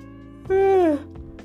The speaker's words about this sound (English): And I drank some of that wine. That's why I'm yawning like this.